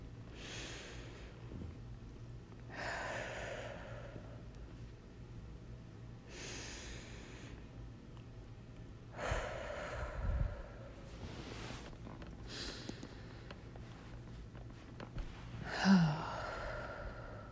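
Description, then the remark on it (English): Slow, deep, intentional breaths drawn in and released at an unhurried pace during a moment of silence, four full cycles of airy inhales and exhales, with no talking. “And we're going to stay here in a moment of silence, and intentional breathing and focus for 4 breaths.”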